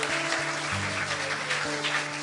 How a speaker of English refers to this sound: Hasn't it been a wonderful morning? Yes, yes, you can give them a big clap. Yeah.